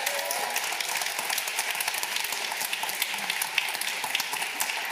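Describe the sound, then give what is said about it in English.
An audience applauds the announcement of a new album coming out in the summertime, clapping steadily for the full stretch, a dense, even wash of many hands clapping at once with scattered sharper claps poking through. No voices stand out. “Go ahead, clap it up for that, yeah.”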